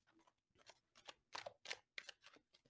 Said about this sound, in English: So I'm just shuffling until the right cards fall out for us.